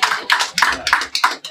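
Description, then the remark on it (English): An audience claps for the speaker's wife in a steady rhythm, about six sharp, bright bursts in under two seconds, fairly loud with no talking over them. “Worthy of claps.”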